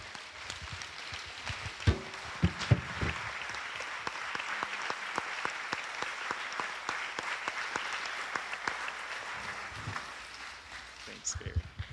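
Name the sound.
audience applause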